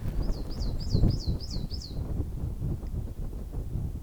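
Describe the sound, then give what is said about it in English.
A quick series of about seven bright, repeated bird chirps rings out in the first two seconds from birds around a garden in the hills in spring, set against a steady low rumble of wind and outdoor background noise. “You might be able to hear all those birds.”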